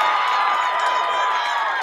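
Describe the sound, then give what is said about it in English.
A big baseball stadium crowd cheers as Trey Rodriguez reaches second with a stand-up double, a loud, steady roar, a dense wash of many voices that holds level for about two seconds without a break. “You can hear the crowd's response.”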